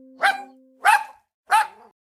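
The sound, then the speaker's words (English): A dog barks three times at a steady pace, each bark sharp, with brief silences between them. “If you guessed el perro, or dog in Spanish, you're correct.”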